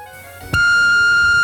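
An answering machine beep as saved messages are played: a sharp click, then a loud, steady high-pitched electronic tone that holds for about a second, preceded by faint tonal hum.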